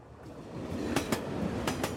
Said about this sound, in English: Okay, that is obviously a train.